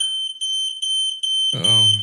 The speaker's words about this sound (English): That's piercing. Yeah. Smoke alarm.